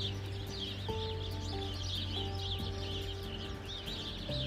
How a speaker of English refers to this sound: But there's just, I don't know, like probably 50 birds in this bush. And this happens a couple of times a year. 50 birds frolic in this bush all day, like it's spring break.